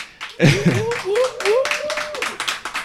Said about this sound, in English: Once again, thank you to our audience here live at the Scratch Atlanta DJ Academy. Give yourselves a round of applause again.